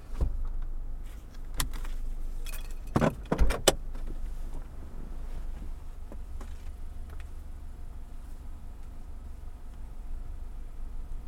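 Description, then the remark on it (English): A brief burst of metallic keys jangling and clinking a few times near the start as the keys are handed over, then fading into a steady low engine-like rumble with no voices. “Take the keys.”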